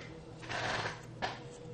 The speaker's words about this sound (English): Rolling dice.